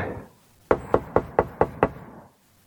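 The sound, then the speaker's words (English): Six quick, evenly spaced, sharp knocks on a man's front door in a steady rhythm lasting about a second, followed by quiet. No one speaks. “I'm just coming up to his door here now.”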